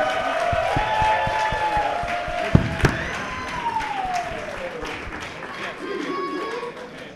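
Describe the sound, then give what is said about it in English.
A crowd applauds steadily to thank guests for coming up, with dense overlapping claps, a couple of sharper slaps standing out, and whistles and cheering voices rising over the clapping throughout. “Big round of applause.”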